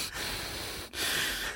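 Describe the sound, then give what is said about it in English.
A voice imitates heavy breathing into a phone: two long, noisy breaths with a brief pause between them and no words. “Just breathing into the phone.”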